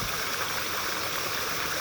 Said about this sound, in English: And listen to the sound of this beautiful stream. The silence. And as you hear this, nobody directs the stream.